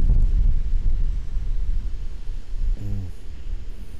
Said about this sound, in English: And it's funny, even in the crashing waves that are probably a good 30 feet ahead of me, and the light winds that are like everywhere, feels kind of westerly, but I don't have my compass with me, so it's just a big guess.